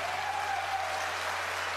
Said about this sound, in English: I would, first of all, whoever those two guys who clapped. I know that ain't who I think it is.